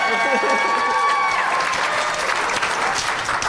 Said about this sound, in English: That deserved a little bit more applause, but all right.